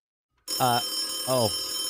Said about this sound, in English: The phone's ringing.